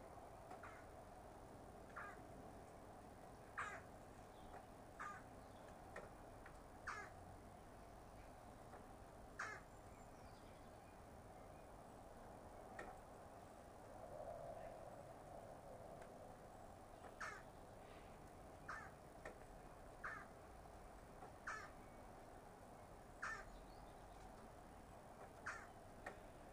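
Short, sharp bird calls repeat every second or two outdoors, fairly faint, over a steady low rumble of road traffic in the background. No one speaks.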